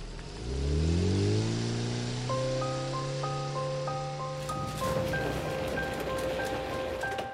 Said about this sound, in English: I sat there looking out onto the falling rain as a small car disappeared into the distance. Every time someone left the tower, it always felt the same.